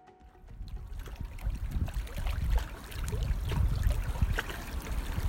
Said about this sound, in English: Now, it's that time to take a short moment to relax and listen to some sounds from nature. This time, it's the sound of water lapping onto the shores of Loch Annie Len in the Cairngorms.